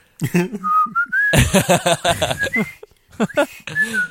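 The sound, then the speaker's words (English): Someone whistles a bouncy basketball exhibition team's theme tune in short, lilting phrases with sliding notes, broken by bursts of voiced, laugh-like vocal sounds and a brief pause before the whistling resumes. “I just want to see the scene reshot, or not reshot, but the audio just changed up to be the Harlem Globetrotters whistling theme.”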